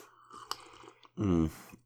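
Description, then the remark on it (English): Quiet sipping and mouth sounds from a bourbon cocktail made with aromatic bitters and simple syrup, poured over ice, with a single light clink, then a loud, satisfied hum of appreciation. “I'm going to have another sip actually.”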